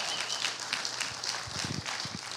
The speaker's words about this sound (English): Come on, give the Lord a clap and a shout if you believe this kind of thing.